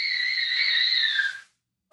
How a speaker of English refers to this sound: My son is screaming in the other room. I don't know if you can hear him. It sounds like he's doing a good job of it.